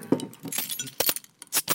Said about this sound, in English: All right. I heard a hiss, so it's got some carbonation, which is good.